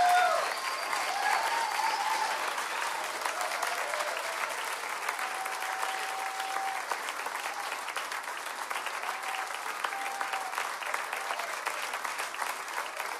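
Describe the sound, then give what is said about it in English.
A church audience applauds steadily for the whole stretch, a dense, even patter of many hands clapping with a brief faint whistle near the start and no speech. “So can you guys just stand up and give them a hand?”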